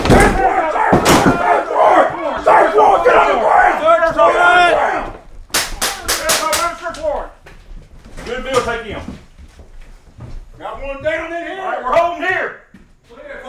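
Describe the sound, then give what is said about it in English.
A door is battered down by the Monroe County SWAT team during a drill in a vacant house, with one loud crash early and a quick burst of sharp bangs midway, while several men yell and shout forcefully throughout. “An enormous crash pierced the silence. There was some yelling, but from the inside, I couldn't understand what they were saying.”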